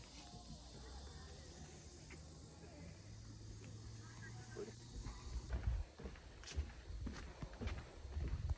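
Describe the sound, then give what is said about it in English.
Footsteps on a wooden boardwalk at Ichetucknee Springs, heading back up to the trailhead of the Trestle Point Trail on a warm, sunny day: a loose series of dull thumps that grow louder and more frequent in the second half, over a steady low hum and faint outdoor background. “we're heading back up the wooden boardwalk to meet the footpath of the trailhead for the Trestle Point Trail.”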